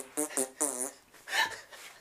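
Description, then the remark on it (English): A person vocally imitates a fart, with a few short voiced bursts followed by a louder, buzzy, sputtering blow, brief. “Poop, poop, poop, poop, poop, fart.”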